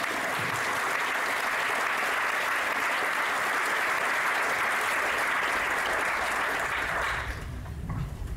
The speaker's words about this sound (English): Get another round of applause for the last speech.